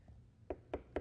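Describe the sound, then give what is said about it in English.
Three firm knocks on an apartment door, evenly spaced about a quarter second apart, fairly quiet, with no voices. “on my apartment door, I opened it, and here's two guys I used to do drugs with, standing there, smiling, with Bibles.”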